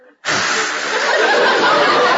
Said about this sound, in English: Nothing. I just feel like blowing my nose, that's all. Blow it.